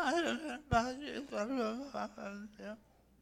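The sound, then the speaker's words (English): A small child vocalizes in a sing-song, babbling way during a sermon: a few seconds of wavering, pitch-sliding voiced sounds, clear, trailing off at the end. “We got a little infant over here.”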